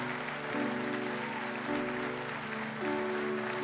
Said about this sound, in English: Give the Lord a big hand clap right now. So good.